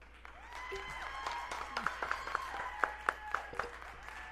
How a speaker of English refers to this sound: Oh, he had a laugh track. We added a little applause track.